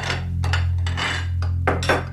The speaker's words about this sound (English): Picking up the picnic basket, she makes her way to the kitchen where her mom is putting some dishes away.